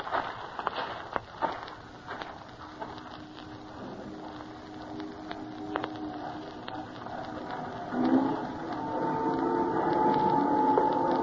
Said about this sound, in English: They're loading coffee right off of a train onto a big old boat.